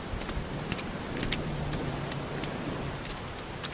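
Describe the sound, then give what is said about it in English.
Steady rain falls across a hard surface on the rocks of Little Brewster Island by the Boston Light lighthouse, a dense wash of hiss broken by scattered sharp drips and taps, with a faint low rumble underneath and no voices. “Follow me, let's get out of this rain.”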